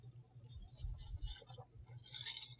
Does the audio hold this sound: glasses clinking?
yes